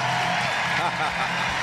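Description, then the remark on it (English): A stadium crowd at Target Field gives a loud, sustained ovation for 44-year-old pitcher Bartolo Colon as the Twins go to their bullpen in the regular season finale: a dense, steady roar of cheering and applause that fills the whole clip without any clear words or pauses. “you are going to hear a huge ovation for Bartolo Colon.”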